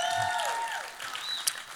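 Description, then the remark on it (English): A crowd breaks into a steady round of applause for God, a dense wash of clapping that holds at an even level, with a few thin, high sliding tones threading through it. “If God needs a round of applause, then it needs to be right now.”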